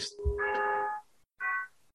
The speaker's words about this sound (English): Did you hear that? Yeah. Who gets a clock like that? What's that? It's that's the Big Ben sound. Dun, it, dun, dun, dun, dun, dun.